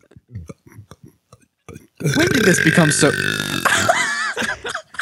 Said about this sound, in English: Oh, no, I can give you a burp if you want. Oh, wait, you already have one. I give you another one.